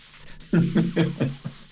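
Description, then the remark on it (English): A voice imitates fire snakes hissing at each other: a steady airy hiss with five short, rhythmic hissing bursts in quick succession, fairly loud. “Okay, so they all just miss their mark on this hardened leather armor, and the fire snakes look foiled and make hissing noises at each other.”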